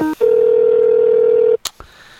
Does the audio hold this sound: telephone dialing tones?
yes